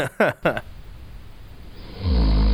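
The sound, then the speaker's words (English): A recorded deep, rumbling snore swells in near the end, heavy and almost bear-like. It follows a few short voiced bursts and a stretch of quiet hiss. “Ooh, what was that one? Bear.”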